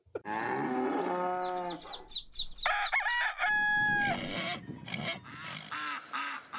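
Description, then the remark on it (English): A long, deep cow moo sounds on a farm, followed by a rooster's shrill crowing and more barnyard animal calls, all fairly loud with no talking. “No idea how to milk a cow or lamb a sheep?”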